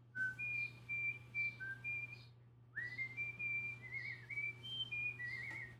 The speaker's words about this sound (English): Play them? Yeah, no, I'm just going to whistle them.